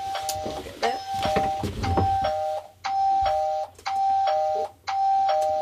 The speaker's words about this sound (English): These chimes are the ding-dongs, and they announce arrivals and departures. Well, this computer screen is telling me which Kākāpō are in their nest or which Kākāpōs have left their nest.